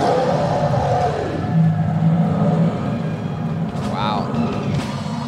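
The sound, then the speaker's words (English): A bear roar sound effect, the 'angry Walker's Point Bear' brought out on stage when a speaker's 60 seconds are up: a deep, rumbling growl that holds steady and loud for several seconds, with a brief higher, strained cry breaking through near the end. “That means wrap it up then, or else you're going to bring out the angry Walker's Point Bear.”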